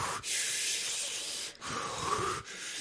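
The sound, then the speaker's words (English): Loud breathy hiss crackles over a microphone in long rushing bursts, broken by three brief pauses, like heavy breathing or static on the mic, with no talking. “Because I hear him breathing, that's all.”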